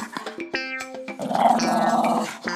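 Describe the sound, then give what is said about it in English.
A dog named Roxy gives a few short whiny yelps, then a sustained rough growl for about a second, ending with another brief yip. “Roxy the dog is on the town.”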